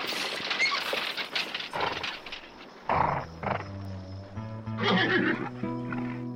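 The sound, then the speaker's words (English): A horse lets out a loud, drawn-out neigh with a wavering whinny, while hooves clop and shuffle in the first few seconds. No one speaks. “But you ain't to do them horses”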